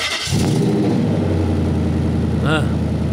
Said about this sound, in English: It's a multicam V8. Okay. Right. Yeah. Good. Yes. Uh-huh. And it, it is unmistakable. It sounds to me about 390 horsepower.